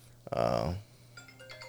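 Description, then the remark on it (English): A phone ringtone sounds once as a loud, bright electronic chime lasting about half a second, then fades into softer, faint tones with a low hum underneath. “Is he calling you back?”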